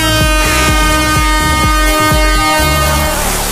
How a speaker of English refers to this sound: and a little bit of our best friend the air horn.